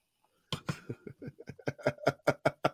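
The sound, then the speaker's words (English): Stout beer glugs out of a bottle into a glass in a quick series of gurgling bursts that grow more regular and ring slightly as the pour continues, with no talking. “I'm pouring it into a glass because I feel like that's what stouts deserve.”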